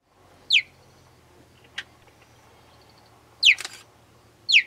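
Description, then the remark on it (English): A cheetah gives three sharp, high-pitched chirps, each a quick downward-sliding squeak, spaced irregularly with a brief click between them, over a faint low background hum. “So cheetahs also chirp. So here's a cheetah chirping.”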